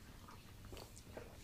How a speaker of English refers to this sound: Do you hear our gulps? I hope they do. Please. Gulp. Please say you do.